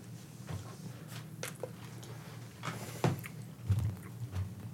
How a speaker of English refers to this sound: Now it's your turn to chew into the microphone.